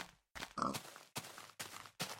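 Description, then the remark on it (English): A pig grunts and oinks in a quick series of about five short, rough snorts, fairly loud, with brief gaps between them and no talking. “And then we'll murder these pigs.”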